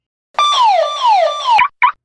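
A loud electronic home alarm wails in repeated descending sweeps, its harmonic tone cycling about three times before cutting off, followed by a short final chirp. No voices are heard.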